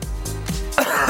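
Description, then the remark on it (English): A person coughs and clears their throat: a quick series of harsh, rasping bursts ending in a louder, breathy hack, with no talking. “Shouldn't have started this story, should I? This cough's going to be...”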